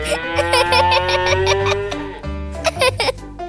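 A loud, drawn-out cow moo with a wavering, bleating edge, followed after a short break by a second, similar lowing call, with no talking.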